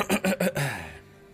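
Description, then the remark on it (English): A voiced yawn: three quick choppy breaths followed by a drawn-out groan that slides downward in pitch and fades away, with no talking around it. “And the final yawn.”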